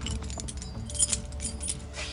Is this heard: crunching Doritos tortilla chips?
no